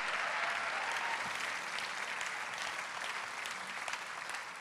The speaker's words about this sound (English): Give the Lord a clap and a praise and a shout.